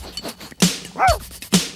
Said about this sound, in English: it starts because like it shows that, you know, he goes out from under the line like normal, and then Pork Chop normally barks twice in the intro, but in this he does like a weak, like incorrect off bark.